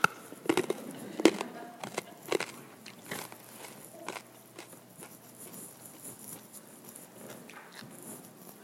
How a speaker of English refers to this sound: as I bite my cough drop so I can actually talk today.